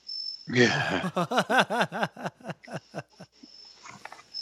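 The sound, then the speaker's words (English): A cricket right outside a window chirps steadily in a thin, high, continuous trill throughout. Midway, a louder, throaty series of pulsing animal-like vocal sounds slows and fades, briefly drowning out the cricket. “Is that cricket outside your window or is it in the room with you? It is right outside my window.”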